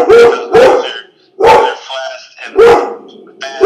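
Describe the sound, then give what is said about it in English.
A pet dog barks loudly, five sharp barks in an uneven rhythm with short whiny tones between them. “Sorry, my dog is.”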